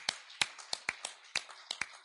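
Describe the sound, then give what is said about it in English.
Scattered hand claps from a small group during a worship service, about eight sharp, crisp claps in an uneven rhythm over two seconds, moderately loud, with no talking. “Let's give Him a hand clap.”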